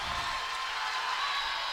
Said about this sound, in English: As the Moanalua crowd, you guys can hear in the background, going crazy, making this, extending their lead by four.